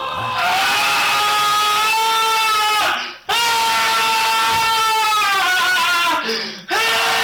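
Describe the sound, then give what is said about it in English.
Loud, sustained screaming in two long drawn-out bursts, each holding a strained high pitch that wavers and slowly falls, with a brief gasp between them and a short final yell. “That's a lot of screaming.”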